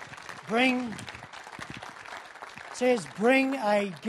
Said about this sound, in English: Applaud God. Come on, applaud God.